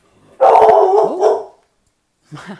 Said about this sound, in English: My dog really wants to know. He's barking at that one too.